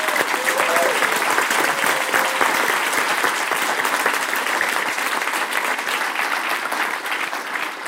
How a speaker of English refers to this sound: I want all of you to give a huge round of applause to our media and marketing team for putting this event together today.